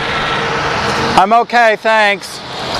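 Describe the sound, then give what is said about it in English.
A city bus rumbles past on 10th Street near Smith Road in Tempe, its broad engine and road noise steady, while a voice briefly speaks over it partway through. “The orbit bus was passing me.”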